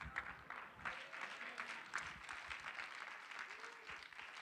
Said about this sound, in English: Clap your hands and receive that word.